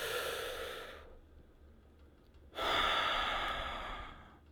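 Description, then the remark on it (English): A deep, full breath drawn in for about a second, a brief pause, then a long, airy exhale, fairly loud with no talking. “Your body releases these chemicals that it only does when you do a full breath like that.”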